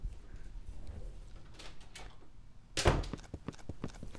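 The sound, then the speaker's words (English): A door is opened with a sharp, loud clack, followed by a run of quick knocking thuds and rattles as it swings, over a low background rumble. “Hold on, I'm gonna open the door and let my lawyers in.”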